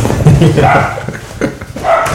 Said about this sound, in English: That's as Kevin's dog barking at everything, he literally barks at everything.